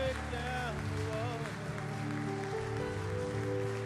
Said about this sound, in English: Come on, can you give Jesus a hand clap of praise this morning? Come on, give him your biggest praise today.